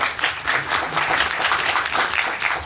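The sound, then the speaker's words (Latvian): Steady audience applause fills the whole stretch, a dense wash of many hands clapping at once, even in loudness without any voices over it. “Aplausi.”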